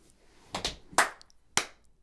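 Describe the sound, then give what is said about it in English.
Three slow, separate hand claps, each a sharp, bright smack with a short ring-out, spaced about half a second apart against a quiet background with no talking. “I'm hate applauding right now, but that was really good.”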